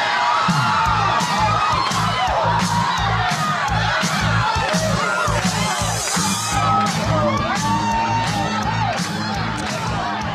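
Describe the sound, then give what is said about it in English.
A crowd-cheering party sound effect marking a show's celebrations segment: a loud, lively crowd cheers and whoops over a thumping party beat, with many overlapping shouts and excited voices filling the whole stretch without pause. “All right, that sound means it's time for the celebrations of the show”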